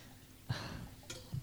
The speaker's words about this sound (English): I was pouring a beer.